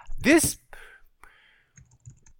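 Clicky computer-keyboard typing comes in a few short, irregular bursts at close range, following a brief sweeping vocal sound at the start.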